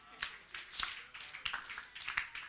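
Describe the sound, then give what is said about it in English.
An audience claps for the Lord together: many overlapping hand claps in a loose, uneven rhythm, with a few sharper accents standing out over a steady, moderately loud patter. “Somebody give the Lord a clap of him.”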